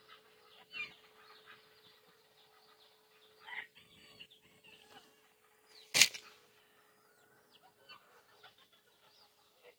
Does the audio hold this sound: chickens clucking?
yes